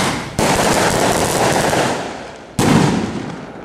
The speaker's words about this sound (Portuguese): Então, dos que nós passamos aqui, tem fogos, né, muitos, muitos fogos, mas assim, é aquele fogos de pobre, né? Pá, pá, pá, pá.